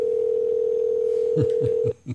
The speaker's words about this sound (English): So we're going to press the call button one more time here and see if we can get our marijuana merchant on the phone.